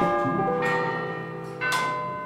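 The deep bell of a famous clock tower in Prague, which rings every hour, tolls twice, heard from a hotel that used to be a palace; each loud strike blooms into a long, shimmering hum of overtones that overlaps the next, with no voices present.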